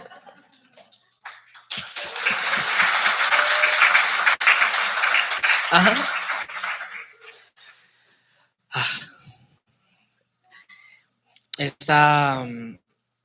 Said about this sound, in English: Un aplauso, por favor, para que. Round of applause.